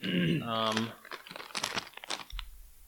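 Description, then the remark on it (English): A short voiced sound at the start gives way to a bag of spicy Nong Shim shrimp crackers being crinkled, a stretch of sharp, irregular crackling rustles, followed by a low thump. “Yes, I have shrimp crackers. Oh, you have had? Okay. Maybe this exact one? Maybe, but the bag doesn't look familiar.”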